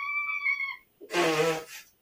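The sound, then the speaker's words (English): A cat wanting to be let in meows twice in close succession: first a thin, high tonal cry, then after a short pause a louder, rougher, drawn-out yowl, with no talking. “Should I let in the cat, though?”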